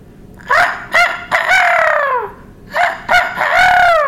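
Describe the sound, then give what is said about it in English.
A rooster crows twice in quick succession, loud, each call opening with short choppy notes before a long, falling cry, with faint sounds of hens around it and no talking. “I better get back to the hens.”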